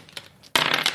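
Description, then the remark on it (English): A small coin token, spent to invoke a shield ability in a tabletop game, drops onto a tabletop, landing with a sharp clatter that rattles and spins loudly for half a second after a couple of faint ticks. No one speaks. “I'm going to invoke Beard Shield. Okay. For a coin.”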